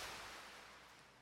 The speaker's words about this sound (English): I can hear nothing but the sound of water lapping against the boat.